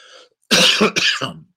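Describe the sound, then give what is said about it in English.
A pastor coughs and clears his throat in a couple of loud, rough bursts, preceded by a faint breath, with no talking. “Because I can't let that stop me from doing the will of God, even this cough.”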